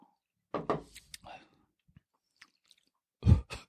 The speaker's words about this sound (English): Cheers. Let's get to the bottom of it. Just slap it down. Let's take a little sippy sip just to get a feel.